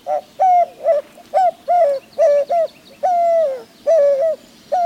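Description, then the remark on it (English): A white-winged dove coos, loud and clear, in a rhythmic run of short and drawn-out hooting notes that repeats steadily with no voices present, in urban Albuquerque. “Since the 1980s, populations of white-winged doves, perfect hawk prey, have exploded in urban Albuquerque.”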